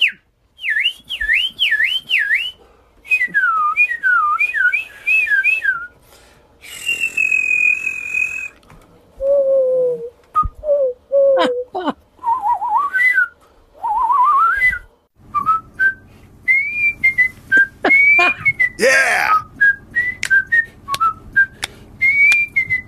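Someone whistles a string of short melodic phrases, warbling trills, swooping slides and steady held notes, clear, with brief pauses between bursts and no talking.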